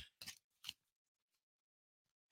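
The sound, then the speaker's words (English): A deck of oracle cards being shuffled, heard as three short, crisp papery bursts separated by quiet gaps, with no talking. “All right, and I'm shuffling.”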